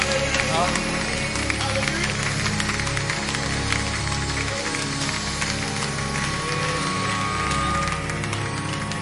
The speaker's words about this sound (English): Come on and clap those hands. Hallelujah.